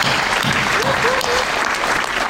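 A burst of dense applause, many hands clapping in a steady, even roar that holds at the same level for a couple of seconds without fading, with a faint voice barely audible underneath.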